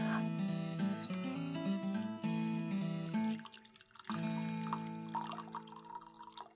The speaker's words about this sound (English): You've got to pour that tea. I am so excited to give this tea a try.